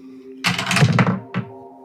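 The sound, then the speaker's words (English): A rattling clatter of dice tumbling across a tabletop for about half a second, followed by one more short knock, over a faint steady background hum. “Yes, Master Dice Roller?”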